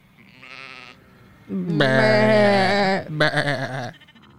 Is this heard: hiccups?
no